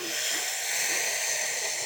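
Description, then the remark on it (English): A deep, steady inhale drawn through the mouth while arching the back backwards during a meditation breathing exercise, breathy and hissing, sustained for about two seconds with no talking. “And as you do, you're going to inhale through the mouth like this.”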